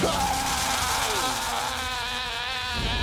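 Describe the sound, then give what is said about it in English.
A loud, raspy, buzzing screech held for about three seconds with a wavering, sliding pitch: a voice imitating an alien creature's strained dying scream, close and harsh. “The scream he does sounds like E.T., don't you reckon?”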